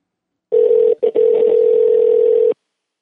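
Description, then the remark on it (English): A loud, steady telephone dial tone hums for about two seconds as a phone call is placed, broken once by a brief dropout near the start, with no voices. “We're going to try and get Charlie's dad on the phone here. See if this shit will work.”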